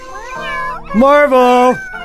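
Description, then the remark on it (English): A person's voice mimics a cat, singing a meow version of Happy Birthday: a long, loud, sing-song meow with rising and falling pitch, preceded by a softer mewing phrase. “And then, of course, doing my own version of the meow happy birthday.”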